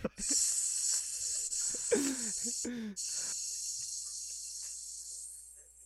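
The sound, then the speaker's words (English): A voice imitates a snake with a long, steady hiss that runs almost the whole time, briefly broken by a few short vocal sounds and breaths partway through. “That was realistic. That was very snaky.”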